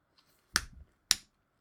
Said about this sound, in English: All right, let's give a 3 clap. So I'm going to clap 3 times.